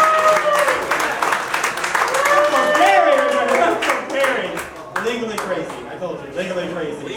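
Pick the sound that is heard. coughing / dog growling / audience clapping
audience clapping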